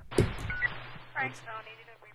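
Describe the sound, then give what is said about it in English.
Short electronic beeping tones come through in a quick irregular sequence, mixed with muffled radio-like chatter and a low steady hum, fairly faint overall. “Is that fucking Morse code, dude?”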